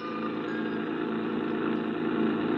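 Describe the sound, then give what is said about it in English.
A steady, rumbling engine of a creaky old rented truck runs continuously with a low drone and faint rattling texture as it is driven toward the town of Barnesboro, moderately loud, with no one speaking. “I rented a creaky old truck and headed for Barnesboro.”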